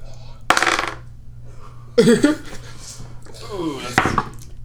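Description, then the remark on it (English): A twelve-sided die clatters as it's rolled for a persuasion check in a roleplaying game, giving three short bursts of hard tapping and rattling spread across a few seconds, with a steady low hum underneath. “Did you roll a d12 just now?”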